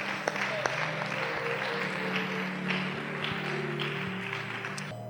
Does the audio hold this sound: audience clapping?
yes